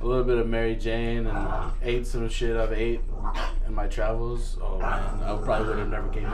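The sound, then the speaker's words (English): A man talks steadily while his dog, Frank the Tank Delgado, barks and yips in short, scattered bursts while fighting with a Swiffer, partly buried under his voice. “Hey, what you're hearing there is my dog, Frank, the Tank Delgado, also named after …, fighting with the Swiffer.”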